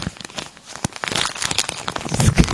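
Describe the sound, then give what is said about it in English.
Loud, aggressive crinkling and crumpling, like plastic or paper being torn apart, with dense crackling bursts and sharp snaps throughout, continuous. “It's an angry crinkle.”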